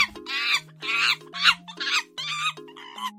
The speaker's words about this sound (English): Monkeys, they gibber.